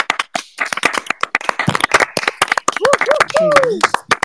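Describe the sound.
A burst of applause welcoming a guest from Self Care is for Everyone: many sharp, irregular claps from a small group, loud and steady for about four seconds, with a few voices calling out partway through.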